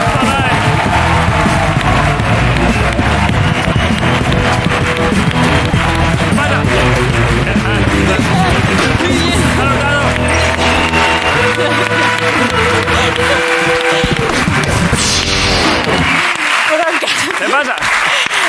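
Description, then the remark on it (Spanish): Loud, sustained applause from an audience, mixed with cheering and shouts, for Sara Hurtado; a dense crowd roar that fades out near the end. “Pido un aplauso para Sara Hurtado en la resistencia.”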